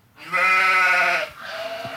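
A goat lets out one loud, wavering bleat lasting about a second, then trails off into a quieter, fading tail. It's prominent, with no voices.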